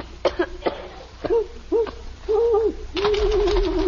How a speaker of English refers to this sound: That's all it is, just an owl.